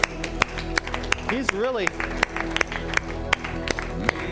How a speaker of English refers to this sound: Hallelujah. Give Lord a hand clap for what he's done today.